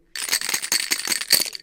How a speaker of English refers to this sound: Take this demonstration of Pai Gao, a common table card game. Shoot the dice, please.